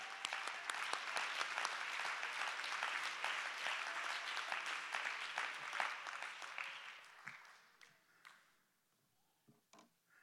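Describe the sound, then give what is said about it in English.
A church audience claps their hands in praise to God during a sermon, a dense, sustained burst of applause that gradually thins out, ending in a few scattered, separate claps. “Clap your hands and give him real praise.”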